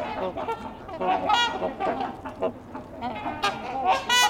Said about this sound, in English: That and their call, you can tell why they're called trumpeter swans.